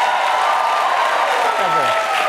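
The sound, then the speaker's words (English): A studio audience applauds and cheers loudly and continuously, dense clapping blended with shouts and whoops from many voices, sustained throughout. “Firstly, you should never have to ask an audience to cheer for you, like for something you've said.”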